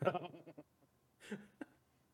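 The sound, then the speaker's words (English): A goat bleats: a long, wavering, nasal cry first, then a shorter second bleat after a brief pause, fairly quiet and with no talking over it. “Goats are never going to be the same way again.”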